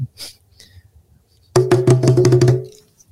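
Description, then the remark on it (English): A djembe hand drum is played in a house, struck loudly in a fast burst of rapid hits lasting about a second, ringing with a deep, booming tone before fading out, after a quiet opening. “Bang your drum, fool.”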